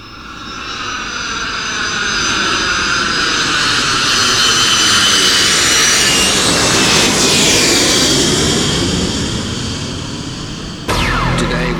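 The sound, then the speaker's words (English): A jet airplane's engine roars as it passes overhead, swelling to a loud, sweeping peak and slowly fading over about ten seconds before cutting off abruptly. “Two planes. First, one flew into one tower of the Twin Towers, then a second.”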